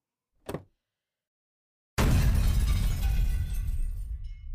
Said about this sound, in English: The C4 buried along the perimeter of Camp Kiwi and the Bird ruptures and bursts, activating the fault lines deep under the earth. The ground shudders, the lake vibrates, as though the whole world takes a breath.